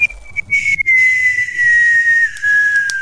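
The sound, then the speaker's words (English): A loud, steady cartoon falling whistle glides slowly downward in pitch over about three seconds, a single sustained tone with no voices over it. “Kind of see it going, just kind of like the coyote going down into the canyon.”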